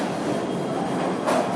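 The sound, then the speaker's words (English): A train rumbles steadily, a dense rolling roar of rail noise, with a brief brighter screech of wheels near the end as it arrives at the station. “This is our train.”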